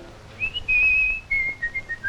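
A whistled short melodic tune for the puppet Missouri Mike in the puppet show Four Feather Falls, clear, with sustained notes stepping down in pitch, a brief pause, then a few more lower notes. No one speaks.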